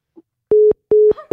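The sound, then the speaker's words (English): Two loud, steady beeps of a telephone disconnect tone, each about a fifth of a second with equal gaps, a pure mid-pitched hum, followed by a brief faint murmur. “You keep getting disconnected.”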